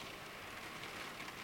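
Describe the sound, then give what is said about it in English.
Steady, hissy rain falling without letup, a soft even wash of patter at low volume with no voices and no distinct individual drops standing out. “And can you hear that rain? Isn't that wonderful?”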